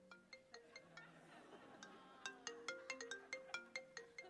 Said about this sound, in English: Hold on, my phone's ringing.